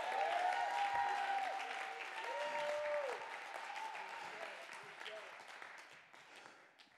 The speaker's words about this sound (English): Clap your hands. Give him praise. Shout with a voice of triumph.